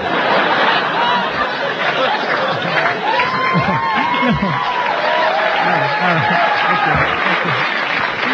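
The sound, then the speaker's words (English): A studio audience on The Late Show with David Letterman applauds a stand-up comic steadily for several seconds, a dense wash of clapping mixed with scattered laughter and crowd voices, holding a consistent loud level throughout. “This is so unusual to hear so much applause.”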